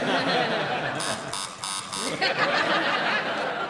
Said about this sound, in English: you buzzed first. I'm sorry, I prematurely buzzed.